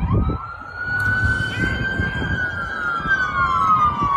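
A police car siren wails during a police chase, with a long, slowly rising and falling tone over the rumble of traffic and engines, loud, with no one speaking.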